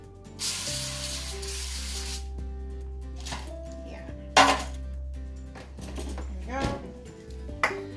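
A steady hiss of cooking spray bursts out for about a second and a half onto a pan set on an open dishwasher door, followed by a few light clinks and knocks of kitchenware.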